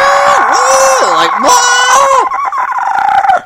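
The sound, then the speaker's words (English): A person voices a harsh, warbling monster screech imitating a movie horror creature, its pitch swooping down and up in a strained, rooster-like wail for about two seconds, then breaking into rough rasping sputters, loud. “Like, the disgusting, like, horror noise that creatures have in movies, except it's constantly happening while you fight the Screaming Antelope.”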